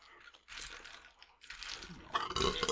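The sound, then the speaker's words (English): Crisp crunching bursts from someone chewing chips, coming in three loud bouts separated by brief pauses, with no talking. “I love to crunch a munch.”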